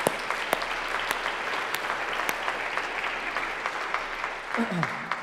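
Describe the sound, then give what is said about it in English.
Steady applause from a crowd, a dense crackle of many hands clapping at an even level throughout, with a few sharper claps and a brief murmur of voices near the end. “You can clap, and it gives me a moment to choke back these tears and emotions”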